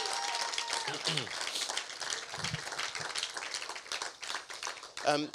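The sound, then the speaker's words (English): An audience claps steadily for several seconds, a dense crackling wash of applause with a few voices calling out over it, briefly swelling near the end, welcoming a visiting engaged couple at a morning session of a modern sexuality series. “Just give them a big round of applause if you can, that'd be really good.”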